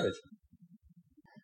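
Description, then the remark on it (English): Beer glasses clink together once in a toast during a lambic beer tasting, a quick, bright chime at the start, then fade into soft, low murmuring voices. “Cheers.”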